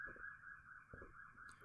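A steady electronic siren wails outside at a high pitch, holding a sustained warbling tone throughout with faint low rumbling underneath and a brief thump partway through.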